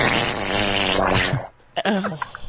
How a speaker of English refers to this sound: No, because that's not a fart. That's something different. That's that. That's a diarrhea fart, girl.